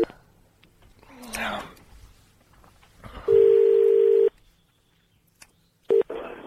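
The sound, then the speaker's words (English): A telephone line tone sounds as someone dials out: a steady, loud electronic beep lasting about a second, then a brief second beep, after some quiet rustling and faint murmuring. “I used to get in trouble for phoning people back”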